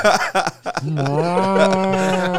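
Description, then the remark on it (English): A man imitates a cow with one long, low, drawn-out moo that swells and holds steady, preceded by a few short vocal sounds. The voice is loud. “This guy right here does one of the best impressions of a cow I've ever seen.”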